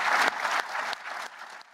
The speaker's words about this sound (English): And please, one more round of applause for our three associate administrators.